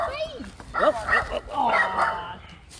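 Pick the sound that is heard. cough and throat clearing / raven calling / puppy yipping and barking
puppy yipping and barking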